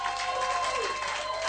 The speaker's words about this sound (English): Hallelujah. We thank God for another beautiful Sunday in the presence of the Lord. Can somebody give a clap unto the Lord?